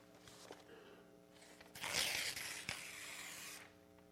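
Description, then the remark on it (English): A sheet of paper is ripped apart in one long, rasping tear lasting a couple of seconds, fairly loud against a quiet background with a faint steady hum. “I imagine if the paper could talk, it would say, that didn't feel good.”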